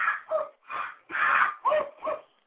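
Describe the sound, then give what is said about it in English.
A man yells out in pain, about six loud, strained cries in quick succession, each a short wordless burst with a wavering, mid-high pitch and brief gaps between. “I mean, He yells a lot. I mean, I don't know if you can hear him. He's yelling now. He's in a lot of pain.”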